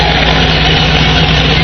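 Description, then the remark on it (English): A truck engine runs loud and steady, a continuous low rumble with a droning hum and no rise or fall in pitch. No one speaks. “It's funny, too, like when you run here and you hear their truck, like the rev is so much different than they were running in Hagerman.”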